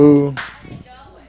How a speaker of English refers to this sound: Thank you for that single. Who did the single clap? Was that you?